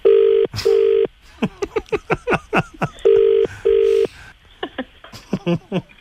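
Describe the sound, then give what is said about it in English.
A telephone rings with an incoming call in a steady double-burst pattern, two short tones, a pause, then two more, with a fast chiming, clicky ringtone melody filling the gaps. It's clear, with no one speaking. “He's ringing me now.”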